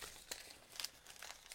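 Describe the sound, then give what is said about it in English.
Soft, irregular crinkling of a separate piece of paper being scrunched and stuffed into a tight space, with a few sharper crackles standing out, fairly quiet, no voices. “So it's a separate piece of paper. Just stuffed in.”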